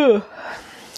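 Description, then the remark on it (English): A single yawn from one person: a short voiced groan that slides downward in pitch, then trails off into a long, soft breathy exhale. “I shouldn't be yawning because I'm not a mother who had to get up at 5 a.m. with her children.”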